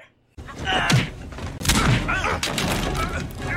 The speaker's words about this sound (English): Voight starts to rumble with Ice Cube and J-Lo once they realize something is amiss around. And the punching sound effects they use. They're not great. Oh, woof, man. It's bad Foley.